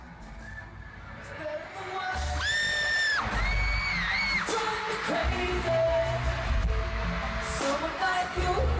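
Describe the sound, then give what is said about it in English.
A woman in the audience at a pop concert lets out a long, piercing scream that rises and wavers over the dense roar of a cheering crowd and loud music. “just listen to me scream when he does it.”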